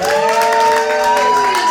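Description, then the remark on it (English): At a comedy show, a crowd cheers and applauds a comedian loudly and steadily, with whoops and sustained clapping for the whole short stretch, the sound dense. “Clap a little bit more.”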